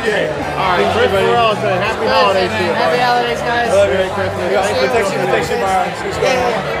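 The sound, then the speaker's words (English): Dense crowd chatter fills the room, many overlapping voices blending into a steady, loud murmur with no single speaker standing out, continuing without pause throughout. “I mean, I wish everybody would be a little bit quieter in here, so I didn't have to shout at my host.”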